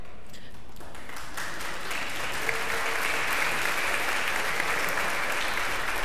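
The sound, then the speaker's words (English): Steady audience applause fills the whole clip, a dense, even wash of many hands clapping that swells slightly after the first second and holds at a constant loud level, with no talking over it. “Some of us get to an age, right, I saw the doctor clap.”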